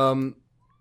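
A cat named Susie, being let outside, gives one short meow with a rich harmonic tone, cutting off after a split second into near silence.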